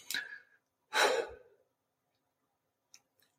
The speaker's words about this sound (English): That's all it takes, guys. Just like 5 slow breaths.